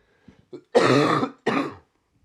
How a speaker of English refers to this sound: There's a little cough right there.